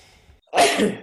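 sneeze

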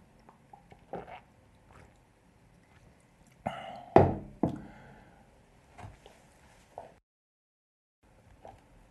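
drinking water

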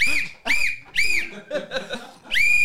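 whistle being blown

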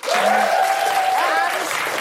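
audience applause

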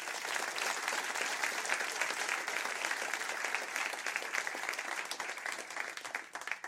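audience applause

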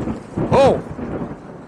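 thunder and rain

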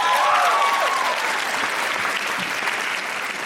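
audience round of applause

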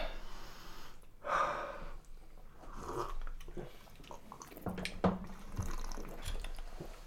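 people sipping drinks

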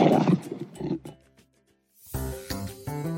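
lion roar

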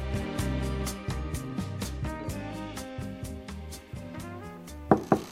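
knocking on a door

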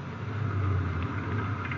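car engine

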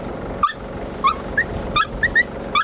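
dog barking and whimpering

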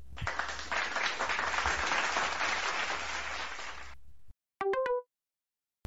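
applause

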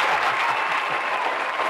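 applause sound effect

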